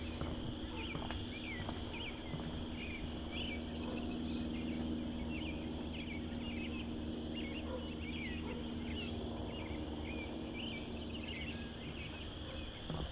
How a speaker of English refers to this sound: Probably several thousand chorus frogs.